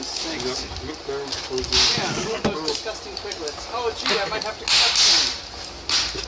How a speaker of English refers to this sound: Those are just slashes. Over and over again. It sounds like someone just slapping someone in the face.